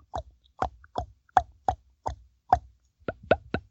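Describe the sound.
A voice imitates a bull elk glunk with the lips: about eleven hollow, wet plops in a steady rhythm, speeding up slightly toward the end, with no talking.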